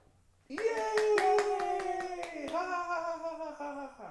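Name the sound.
hand clapping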